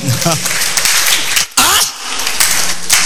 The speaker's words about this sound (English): Give the Lord a clap.